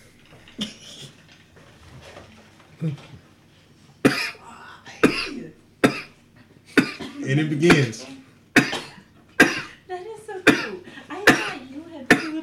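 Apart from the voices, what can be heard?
coughing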